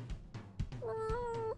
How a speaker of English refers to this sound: James's cat. Hang on. Get this up on the mic.